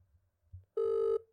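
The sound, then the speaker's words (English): A telephone rings with a steady electronic tone as a phone call begins: one loud, clear burst lasting under half a second, a short pause, then the next ring starting. No one speaks. “So now you all get to listen in as the phone call begins.”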